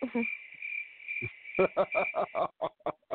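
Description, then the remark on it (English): A cricket chirping sound effect on its own: a steady high-pitched trill that breaks into a quick run of rhythmic pulsed chirps, fairly loud, with no talking. “Bad fact, give her a bonus cricket for that one.”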